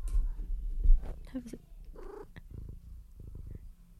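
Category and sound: animal, domestic cat purring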